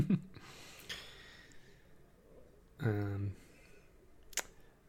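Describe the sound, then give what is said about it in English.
A brief voiced yawn, a drawn-out tonal exhale lasting about half a second, stands out against quiet room noise, with a few faint breaths and small clicks around it. “Listeners, I just yawned.”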